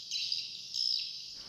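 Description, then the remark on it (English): A dense, high-pitched chattering of recorded swiftlet calls plays through speakers inside a walled building with an opening in the roof in Malaysia, autumn 2014, to draw swiftlets in: a continuous buzzy twitter that swells twice before cutting off abruptly, with no voices. “It's autumn of 2014, almost 3 years since we switched on the recorded sounds to draw the Swiftlets in.”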